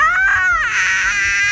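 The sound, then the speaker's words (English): A loud, piercing shriek from a drider, a creature about 10 feet tall with a spider's body and a humanoid upper body, long flowing white hair and dark skin, holding a spear: a high wavering cry that bends downward midway, then turns into a harsh, raspy screech sustained to the end, with no talking. “It's got long flowing white hair and dark skin, and it is holding a spear in its hand, and it gives out just a blood-curdling shriek.”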